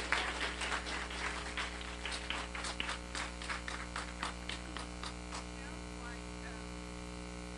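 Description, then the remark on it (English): A crowd claps to welcome a reverend, dense at first and then thinning into scattered claps that fade out after a few seconds, all over a steady low electrical hum. “So with that, would you do a favor for me and let's welcome”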